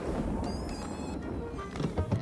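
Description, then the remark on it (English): A loud rumble of thunder from a storm cloud over the Astral Observatory in Pflugerville, with a harsh, crackling texture, overlaid with thin electronic whining tones that give it a mechanical, robotic edge. It runs steadily for a couple of seconds. “Is that just me, or did that thunder sound awfully robotic?”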